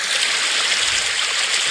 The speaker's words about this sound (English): What's a? Oh, what about a babbling brook?